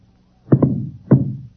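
Three sharp gunshots ring out with no voices: a quick pair, then a third about half a second later. Each is a dull, punchy crack with a short echoing tail.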